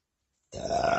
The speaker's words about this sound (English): Well, a burp. Sorry about that.